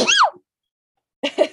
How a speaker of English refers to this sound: I'm gonna like. Sneeze.